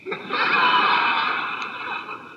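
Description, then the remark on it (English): A voice imitates Maharaji's snoring with one long, raspy, breathy rattle lasting about two seconds, fairly loud and steady before tapering off slightly at the end. “And Maharaji was sitting there and Maharaji started to snore.”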